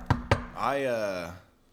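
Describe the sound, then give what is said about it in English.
Two quick, sharp knocks on a wooden surface, evenly spaced, followed by a short drawn-out vocal sound from a person. “Knock on wood.”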